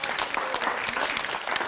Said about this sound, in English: Applause for the first question from the audience.